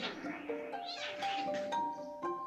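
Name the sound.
cat meowing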